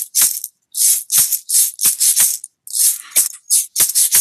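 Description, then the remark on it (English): A ride cymbal plays a steady swinging pattern, giving the quarter note on one and three and a shuffle on two and four, with bright, hissy metallic strokes in uneven long-short groupings and brief gaps between phrases. No voices, just the cymbal ringing out fairly loudly. “And then the ride cymbal beat, which is, the most magical of all things, because on one and three, it gives you the quarter note.”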